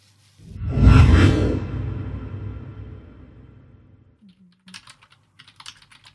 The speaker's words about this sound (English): just gonna unmute my mic and start typing.